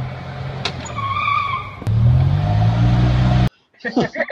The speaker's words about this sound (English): The video was kind of crazy, and I mean, he was going full tilt on that golf cart. You could kind of see some people in the background like, no, don't do that, or whatever.